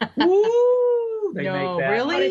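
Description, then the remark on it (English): A person on a ghost tour makes a spooky ghost wail, a loud voiced moan that swoops up and holds a steady pitch, then breaks into a wavering, warbling howl for a couple of seconds. “And when we get into areas where I know there's paranormal activity, I have everyone in the group make a ghost noise, which ghosts don't really make that noise.”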